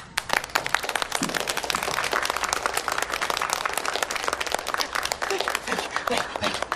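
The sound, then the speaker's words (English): Loud, sustained applause from a crowd, dense overlapping claps filling the whole stretch at a steady level with no pauses. “Clapping's a little loud.”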